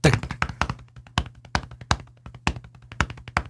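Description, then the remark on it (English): Synthesized bass drum thumps on each beat in 5/4 time, giving a steady, uneven-feeling pulse, clear, with lighter clicky synthesized percussion between beats and a low sustained tone humming underneath. “With this bass drum thumping on each beat.”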